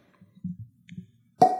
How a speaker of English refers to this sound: So our first, I'm cracking the label here. So this episode is powered by Smooth Ambler, the Weeded. So we'll get a nice little bottle pop.